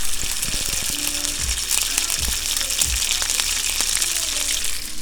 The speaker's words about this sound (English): Ooh, you see that bacon sizzling? Hear that pop.